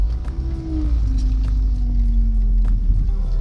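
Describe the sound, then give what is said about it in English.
A car drives while the driver looks for a parking space, with a steady low engine rumble and a humming drone that slides gently down in pitch, holding at an even loudness throughout with no talking. “You're with me while I'm trying to find a parking space.”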